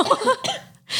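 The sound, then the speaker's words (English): A choked burp: a short, voiced, gulping croak that cuts off into a brief silence, then ends in a harsh, breathy burst of air, fairly loud throughout. “That was actually like a burp that like chokes me.”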